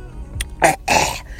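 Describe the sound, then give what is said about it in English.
A person clears their throat in two rough bursts, a short harsh rasp followed by a longer gravelly one, with no talking around it. “Let me clear my throat one more time.”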